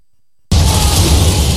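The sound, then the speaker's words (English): After half a second of silence, a sudden loud crash bursts in and continues as a dense, roaring smash of debris for about a second, with no voices: in a movie, someone crashes into the room in the middle of a band's performance to attack Scott. “And in the middle of their performance, out of nowhere, someone crashes into the room to attack Scott.”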